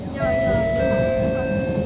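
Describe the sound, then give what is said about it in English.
A Yishun-bound metro train's electric motor whines in steady, sustained tones over a low rolling rumble, fairly loud, as the train slows while approaching Ang Mo Kio station. “I think the incoming train is this train right here, and you're ready for the next one in Yishun bound.”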